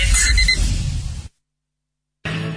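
A loud, busy ringing like an alarm clock going off, harsh, cuts out abruptly into a second of silence before sounding again for a moment.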